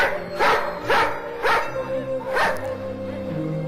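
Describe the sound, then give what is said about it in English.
In the trailer for the film Les yeux sans visage (Eyes Without a Face), dogs bark in four sharp, evenly spaced, loud bursts over a steady low droning tone that carries on after the barking stops. “Here come the dogs for you, Professor.”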